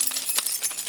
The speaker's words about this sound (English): So, man, sometimes I walk around and just shake my keys because I can't.